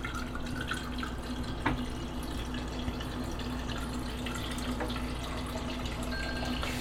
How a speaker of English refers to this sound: So while we're doing that, just getting stuff ready, I'm going to fill a glass with water.